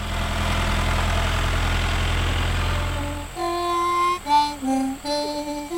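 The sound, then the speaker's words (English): A tractor engine idles with a steady, low diesel rumble for about three seconds. It then cuts away to clear, sustained melodic tones. No one speaks. “All I wanted to do when I was little was be on one of these tractors around here when it was moving.”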